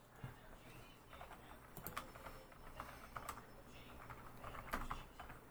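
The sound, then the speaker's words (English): Rapid, irregular clicking of keys on a computer keyboard as someone looks up whether the game Jade Empire is backwards compatible on Xbox One, fairly quiet, continuing steadily with brief pauses over a low background hum. “Somebody fill time, so I'm not just typing.”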